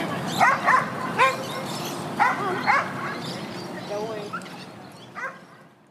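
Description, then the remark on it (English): A dog barks at a dog park in short, sharp bursts, two quick pairs and then scattered single yips, loud, over a steady outdoor background hum with faint voices. “Like me, right now, I'm at the dog park with my boyfriend's dog.”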